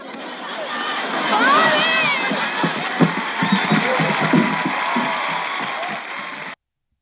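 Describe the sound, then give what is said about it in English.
A TV sitcom laugh track: a studio audience erupts in loud, sustained laughter and applause, with scattered whoops and claps layered in a dense crowd roar for several seconds before cutting off abruptly. “I love that they have the laugh track and the applause.”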